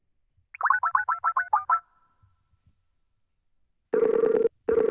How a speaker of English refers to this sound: Pick up the phone. I know you're at home. Pick it up. Pick it up. Pick it up.